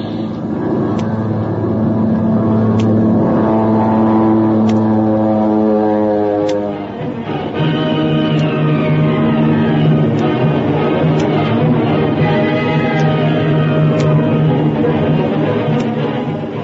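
A stolen Nazi airplane's engine roars loudly and steadily as it dives toward the sea to escape machine gun fire from another plane, its droning pitch sliding and shifting throughout, with faint sharp ticks scattered over the roar and no voices.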